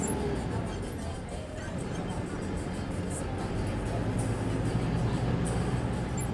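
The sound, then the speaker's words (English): Steady traffic noise on busy 31st Street in Havana, Cuba, as someone is about to board a new fixed-route city bus, with the deep rumble of a bus engine and indistinct voices murmuring in the background, continuous and fairly loud throughout. “Here I am on 31st Street about to get onto the new bus.”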